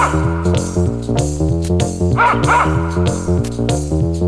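A small dog barks and yips a couple of times in quick succession over a bright, bouncy stepping melody that plays throughout.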